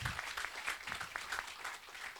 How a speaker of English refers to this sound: We can clap for that. We can clap for that. Thank you.